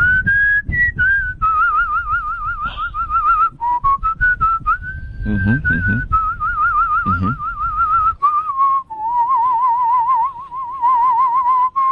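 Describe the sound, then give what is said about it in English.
A person whistles a continuous, wavering melody, with brief breaks where the tone shifts as the whistle switches between breathing out and breathing in, the inhaled tone sounding slightly breathier. “No, but actually I can whistle several different ways, including in as well as out.”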